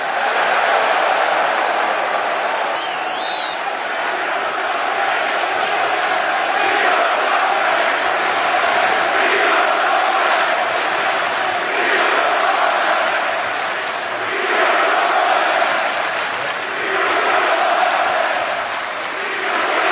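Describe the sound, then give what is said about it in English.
A large arena crowd shouts and roars continuously for the whole stretch, loud and dense, its noise surging in rhythmic swells every couple of seconds like massed chanting. “Granted, I understand it's essentially the same unappreciative crowd full of scumbags from last night.”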